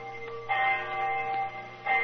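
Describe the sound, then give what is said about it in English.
A bell striking the hour at 10 o'clock at night in Saxe Coburg Square, in the rain: two resonant strokes about a second and a half apart, each hum lingering and overlapping the next, moderately loud with no voices. “Our rendezvous took place right on the dot. I remember the hour was striking.”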